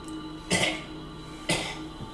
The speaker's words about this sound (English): Is that coughing coming from the cell? It's coming from one of the cells, not the unlocked one.